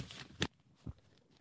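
A short burst of a piece of paper being crinkled: soft rustling, then one sharp crackle and a duller crunch, fairly quiet, with no one talking.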